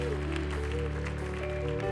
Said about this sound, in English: They are in the room and I think we should give them a huge, huge clap.